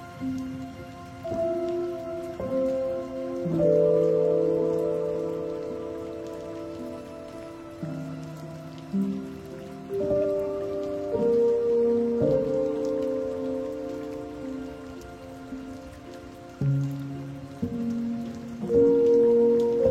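Steady rain patters on a hard surface in a dense, continuous hiss, with sustained low musical tones shifting underneath at a fairly constant loudness and no voices.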